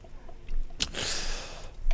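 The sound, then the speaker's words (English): An airy slurp of someone sipping a drink, a quick wet intake followed by a longer hissing draw lasting about a second, with no talking. “Wow, you just got through all the dialogue in like a span of time I was taking a sip from my drink.”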